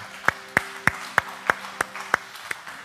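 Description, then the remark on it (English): A church audience at Elevation Community Church in Blanchester, Ohio, claps in unison to a steady beat, about eight sharp, evenly spaced claps over roughly three seconds, with a faint low hum sustained underneath and no talking. “Go ahead and clap your hands if you're glad to be here today.”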